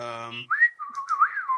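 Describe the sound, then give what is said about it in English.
A short hummed vocal note gives way to a bright whistle that warbles and glides up and down in quick chirpy bursts, imitating the beeping of BB-8, an astromech droid. “So we'll get to hear more twitching and beeping from another robot.”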